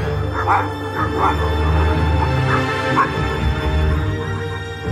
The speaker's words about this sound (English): My dreams are haunted by beating wings, and outside, far off, a dog barks, on and on through the whole restless night.